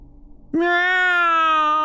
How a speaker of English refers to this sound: Meow! A high-pitched wail broke my thoughts. I turned to see the two cats still standing on the porch.